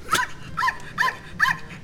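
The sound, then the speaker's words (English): A small mixed-breed dog named Arnie barks four times in quick, evenly spaced succession, each bark short, high-pitched and yappy, with no voices over it. “He's a little bit of everything. He's a little mutt.”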